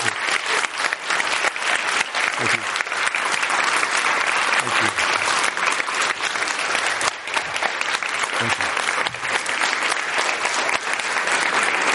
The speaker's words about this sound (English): And ladies and gentlemen, let's give him a big round of applause.